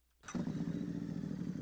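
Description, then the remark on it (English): A green motorcycle with a sidecar kicks into life after a brief silence, then settles into a loud, steady rumbling idle with a throaty low growl. “A green motorcycle with a sidecar.”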